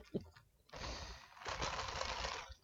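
Ice rattling and clinking inside a shaken iced coffee: two bursts of dense, rapid, bright clicks, the second one longer and louder, with a short pause between them.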